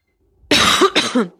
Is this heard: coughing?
yes